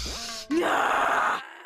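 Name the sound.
screaming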